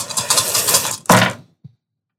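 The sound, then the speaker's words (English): A handful of dice, rolled for a level 3 divine smite totaling 60 points of damage, clatter and rattle in a dense, bright burst for about a second, then a second sharp tumble follows after a short pause, ending with one faint click. “Wow, look at all those dice.”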